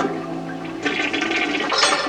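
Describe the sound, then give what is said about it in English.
A toilet flushes torn-up paper down, a low rumble giving way to a rising rush of swirling water that grows louder and hissier toward the end, with no voices present; from a 1960 American film. “And then she tears up the paper and she flushes that torn up paper down the toilet.”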